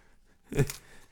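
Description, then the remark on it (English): A single brittle crunch as someone bites into a dry, crisp, strawberry-tasting chocolate snack like a malted milk ball: one short, crackly burst that rises sharply and fades within a quarter second, with quiet before and after. “It sounds brittle. Crunchy.”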